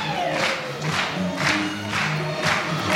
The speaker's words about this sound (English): Give him a clap, give him a clap, give you a clap.